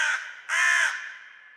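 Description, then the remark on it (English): A crow gives two harsh, raspy caws, a short one followed by a longer, louder one that trails off. No voices or other sounds accompany it. “Caw”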